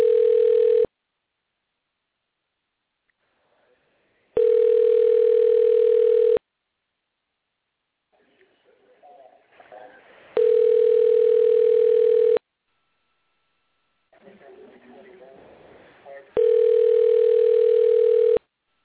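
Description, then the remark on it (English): A phone call rings out unanswered: four steady, buzzy ringback tones, each about two seconds long, separated by longer pauses filled with faint murmuring noise. “Hold on, why is the World Series game that intriguing to where nobody's answering their phone?”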